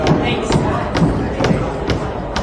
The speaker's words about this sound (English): Pounding on the glass to get in.